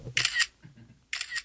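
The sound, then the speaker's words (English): Two quick bursts of camera shutter clicking while taking pictures of a ceiling, each a short crisp rattle of mechanical snaps, separated by a pause with only a faint low murmur in the background. “My camera roll is ridiculous pictures of my ceiling right now.”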